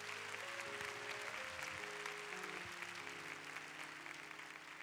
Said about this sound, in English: And all who agree with that prayer, clap your hands and give praise.